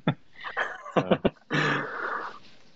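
A dog lets out a quick run of short, sharp barks, then a longer, rougher drawn-out yowl that fades. It is fairly loud, with no talking.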